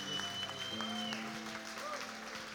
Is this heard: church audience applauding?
yes